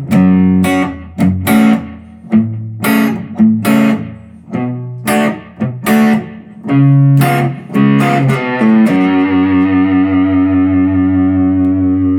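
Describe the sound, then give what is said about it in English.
A heavily fuzz-distorted electric guitar plays a loud, choppy riff of punchy chords with broad buzzy harmonics, then holds a final chord that rings out and sustains to the end. No one speaks. “Growly. Yeah. Fuzz. All the fuzz.”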